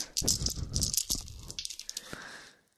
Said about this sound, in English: I have here my D&D dice.